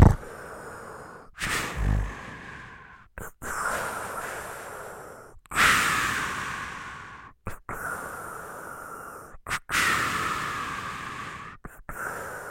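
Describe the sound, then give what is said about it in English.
A voice imitates CPAP machine mask breathing, producing a steady run of long, hissing, airy breaths, around seven of them, fairly loud, each separated by a brief pause. “But luckily now a CPAP machine could be the cure, where it's just”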